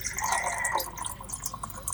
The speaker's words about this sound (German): Ich gieße mir nur kurz was zu trinken ein, mein Gurkenwasser hier.